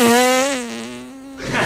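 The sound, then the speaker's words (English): A long, buzzing fart noise with a steady low pitch that wavers slightly, holding for over a second before breaking into a short breathy sputter. No one speaks. “Political satire from the back door.”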